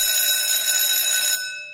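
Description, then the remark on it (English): A loud, harsh school bell rings in one continuous metallic burst, then cuts off abruptly and leaves a short fading tail. No one talks over it. “Well, that's the bell.”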